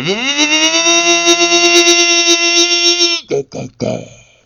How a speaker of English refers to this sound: The garden strimmer!